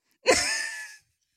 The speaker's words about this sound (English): Bless you.